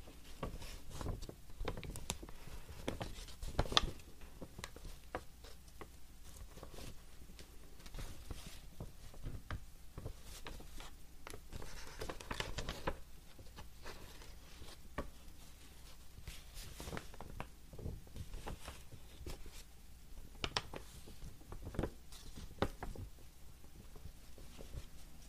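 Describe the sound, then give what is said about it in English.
Quiet rustling and crinkling of paper being handled, with irregular soft taps and brushes scattered throughout and no voices. “Which paper sound do you enjoy the most?”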